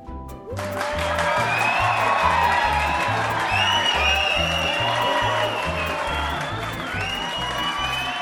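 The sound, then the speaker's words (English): A loud crowd cheers and applauds for about eight seconds, with rising whoops and whistles over dense clapping and a steady, rhythmic low thumping underneath. “And the sound of our cheering fans means that it's time for listener comments.”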